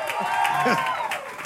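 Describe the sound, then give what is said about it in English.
An audience at V1 Church's packed 9 a.m. service shouts and cheers together for everybody watching online, a dense wash of many overlapping raised voices that stays loud and steady throughout, with individual whoops rising briefly above the crowd. “Come on, V1 Church, let's all shout for everybody watching online, our global family, all of our visitors in this packed out 9 a.m.”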